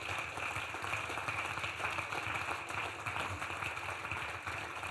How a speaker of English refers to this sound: If you are clapping, go ahead and clap.